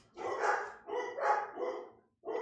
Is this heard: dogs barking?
yes